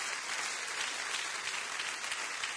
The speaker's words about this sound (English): Would you clap your hands all over the house right now?